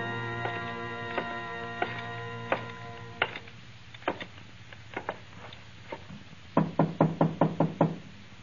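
Knocking on a wooden door: a slow series of single raps, then a quick burst of five or six firm knocks, fairly loud over a low background hum.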